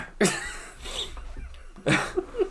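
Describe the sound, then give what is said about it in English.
A sharp, explosive sneeze bursts out, followed about a second and a half later by a second loud, throaty burst, with quieter breathy noise between them. “I just sneezed like an old prospector”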